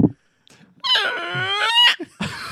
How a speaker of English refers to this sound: You've got a very squeaky door.